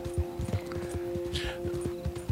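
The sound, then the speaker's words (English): Hooves of a horse being ridden hard gallop in a quick, steady rhythm of dull thuds, fairly loud, over a constant low hum, with a brief rustling swish partway through. “But yeah, so that poor horse, you are riding that horse hard.”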